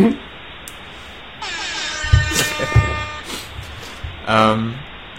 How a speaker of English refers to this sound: If I can have Tony design me a suit, that's what I would put on there. It's like, I need an air horn.